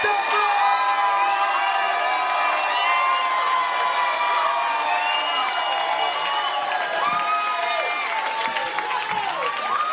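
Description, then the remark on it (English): An audience claps and cheers steadily for the full ten seconds as a performer comes to the stage, a dense wash of applause with shrill whoops and shouting voices rising and falling on top. “Start clapping your hands right now.”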